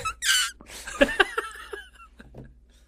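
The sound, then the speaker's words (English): Someone vocally imitates a squeaky fart: a breathy puff followed by a few short, high, strained squeaks in a quick stuttering run, fading out with giggly breaths. “His ass is, like, so swelled up that, like, when he farts, it's just, like, a squeak.”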